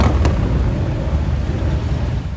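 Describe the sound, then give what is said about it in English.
A steady, loud low rumble of idling traffic at the San Isidro Port of Entry border crossing, with SUVs, four-door sedans and motorcycles waiting in line. There is one brief sharp click near the start and no voices. “SUVs, four-door sedans, and motorcycles wait in line as far as the eye can see.”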